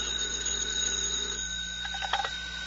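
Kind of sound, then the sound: signal or alarm, telephone ringing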